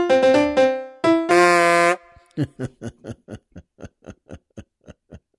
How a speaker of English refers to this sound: And that, of course, is my favorite car honk from an automobile made exclusively of saxophones.